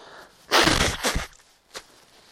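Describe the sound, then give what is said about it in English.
Someone blows their nose: a loud, rough burst of breathy noise that swells twice in quick succession, followed after a pause by a short, softer snuffle. No one speaks. “I'm going to blow my nose, which I sort of should have done last night as I was really struggling for breath.”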